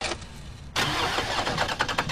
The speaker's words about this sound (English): Helen is trying to start her car. The second your car doesn't start, Keith, you know. You need to jump? Yep. I'm not a mechanic, but I think you flooded it a little.